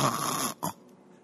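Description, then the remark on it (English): A big man snores loudly: one long, rough, rattling inhale, then a brief snorting catch before it falls quiet. “That guy can snore.”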